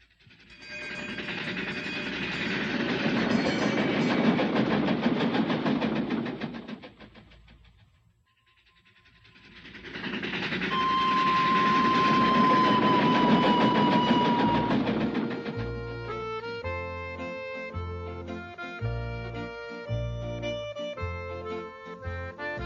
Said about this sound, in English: Howdy, folks. Please keep your hands and arms inside the train and remain seated at all times. Now then, hang on to them hats and glasses, because this here's the wildest ride in the wilderness.